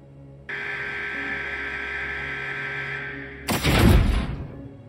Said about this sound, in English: I heard the locks in my door shift. I stood up and backed into the corner of my cell and heard the door open on its metal hinges.